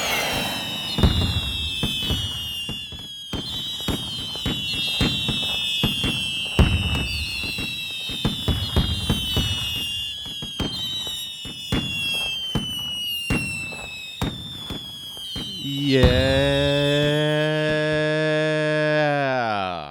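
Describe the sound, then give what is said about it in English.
A rapid barrage of fireworks bursts overhead, with sharp, crackling bangs and high whistling streaks overlapping for about fifteen seconds, followed by a long, sustained tonal whine with no voices. “Pumped up when there's a bunch of fireworks going off overhead”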